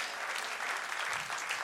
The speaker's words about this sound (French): Oh, dites béni soit l'Éternel. Donnez une bonne main d'acclamation.